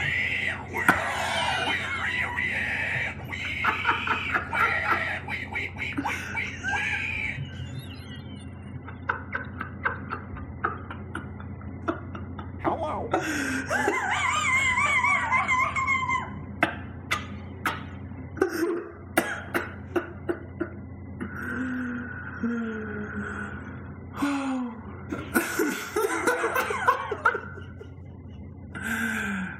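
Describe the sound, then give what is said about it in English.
People imitating pigs with a run of snorting grunts, throaty rasps and high, wavering squeals that rise and fall in pitch, coming in loud bursts and sharp clicks over a steady low hum. “I hate how good those pig noises were, man.”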